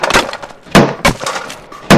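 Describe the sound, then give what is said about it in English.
A wooden door reinforced with steel bars is smashed in with several loud crashes and splintering cracks, coming in irregular bursts over a couple of seconds, with no voices. “Solas and Bardar move to open the door, quickly smashing it in and making room for Nim and Orson to come in behind them with ranged weapons.”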